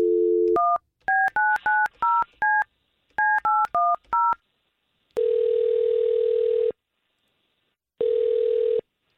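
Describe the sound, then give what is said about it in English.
A brief telephone dial tone gives way to a quick run of touch-tone keypad beeps in two bursts as a phone call is placed, followed by two long, steady ringback tones separated by silence. No voices. “Let's make this phone call.”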